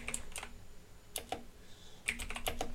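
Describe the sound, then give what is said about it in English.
Clacky typing on a loud computer keyboard in irregular bursts of sharp keystrokes, a few quick taps, a pause, then a faster flurry, with no one speaking, while looking up the Lego Star Wars cast. “Already, yeah, I love that the whole audience can hear all your typing.”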